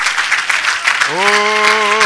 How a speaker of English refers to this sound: Let's clap our hands one more time. Hallelujah.